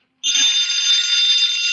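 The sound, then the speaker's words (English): A telephone rings with a loud, shrill, continuous electric bell tone that starts abruptly and holds steady without a break, with no voices present. “Answer the phone.”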